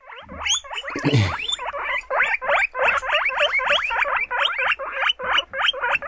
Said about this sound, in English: Guinea pig. Oh, yeah. Marvellous. Guinea pig is an awesome animal. Let's hear it again.